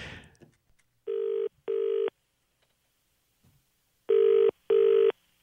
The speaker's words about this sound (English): Why do we call a sports pub over in London, England, and see if we can get a rise out of whoever answers the phone, okay?